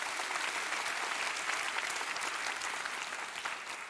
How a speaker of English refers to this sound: Thank Him. Come on, let's give God a clap offering. Shall we do that?